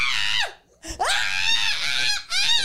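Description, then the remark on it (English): A person lets out three shrill, high-pitched screams in quick succession, mimicking a frightened shriek; the screams are loud, separated by brief gasping pauses. “Yeah, I'd be screaming like the girl who was at.”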